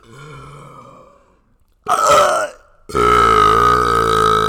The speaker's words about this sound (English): Hey, I just remember, we never did the burping contest. Oh, shoot. Quick burps for the outro.